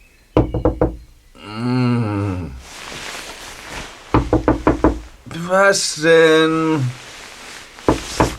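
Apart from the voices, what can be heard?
knocking on a door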